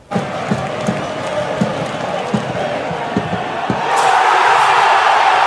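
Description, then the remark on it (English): A boisterous stadium crowd at the Vancouver Whitecaps' first ever MLS playoff game win roars continuously over steady, rhythmic low thumps, then the noise swells into a louder, sustained cheer for the last second and a half. “But let's go back to last night, where the Caps won their first ever MLS playoff game in front of a rather boisterous and wonderful crowd.”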